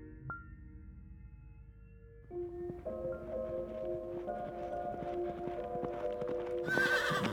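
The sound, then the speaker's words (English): A horse coming home alone without its rider whinnies and neighs with drawn-out, wavering calls while its hooves clip-clop steadily underneath, growing louder toward the end with a sharp high squeal. “When their father's horse came home alone, the merchant's children were annoyed.”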